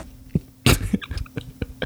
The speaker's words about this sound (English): I like a good fart.